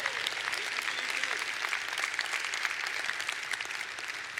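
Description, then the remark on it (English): A crowd claps steadily and densely as a shout and clap offering to God, the dense patter of many hands filling the whole stretch, with cheering voices mixed in and no single speaker standing out. “Come on, let's give God a shout and a clap offering.”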